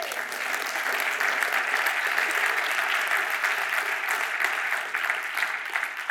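An audience claps their hands for the Lord in sustained, dense applause, many overlapping claps blending into a steady, loud wash that holds for several seconds without talking.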